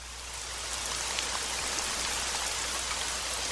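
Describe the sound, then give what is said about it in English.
Steady rain falls continuously on leaves in a wooded area, a dense hiss of countless drops spread across the highs with faint individual pattering, constant in loudness and heard alone without any voices. “And we just listen to the rain, and the countdown circle counts down to 30 seconds.”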